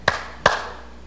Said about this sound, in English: So what do you think we should do to get that light on? Well, you can yell real loud, turn on light! It probably wouldn't make any difference. You could clap your hands.